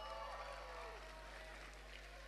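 A quiet, steady patter of audience applause runs for a couple of seconds, a dense wash of clapping over a low electrical hum, with a faint hint of voices underneath.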